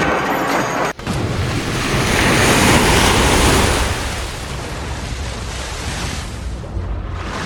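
Ocean waves surge and crash in a loud, continuous roar of surf, swelling to a peak midway before settling into a steady wash, with some wind buffeting and no voices.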